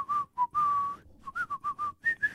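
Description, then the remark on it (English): A person whistles the bouncy, upbeat melody of a TV series theme song, with clear sustained notes and quick staccato phrases in a march-like rhythm, without any talking. “I think you should lay next to my bed at night and whistle that.”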